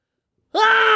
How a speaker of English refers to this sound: That was actually much louder cool. than I thought. It does sound good. You got a good scream.